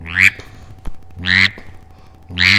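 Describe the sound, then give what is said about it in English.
Three loud, raspy drake mallard quacks blown on a duck call, spaced about a second apart, forceful, with quiet breathy gaps between them and no talking. “But a mallard drake has this.”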